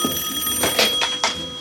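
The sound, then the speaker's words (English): A telephone rings in a film scene with a bright, electronic tone, its insistent trill pulsing in quick bursts at steady volume, heard alone. “Here's the big phone call.”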